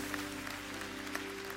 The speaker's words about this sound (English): And so just let's give Jesus a round of applause for the last 15 years, because he's the one that deserves it. He really does.